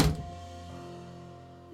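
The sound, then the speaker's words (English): A door shuts with a single dull thunk, followed by a low, steady ringing hum that slowly fades over a couple of seconds. No voices are heard. “The door closes.”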